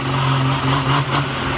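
A Hemi car engine revs hard on a dynamometer at a horsepower competition, a loud, sustained roar with a steady low drone and slight surges in pitch, no voices over it.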